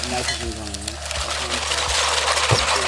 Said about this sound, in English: Okay, so what he's doing, he's poured the liquid nitrogen into the cocktail shaker with the green leaves, and he's muddling it, you know, with a standard cocktail muddler. So now I'm crushing up the herbs.